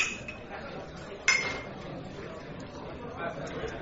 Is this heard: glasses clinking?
yes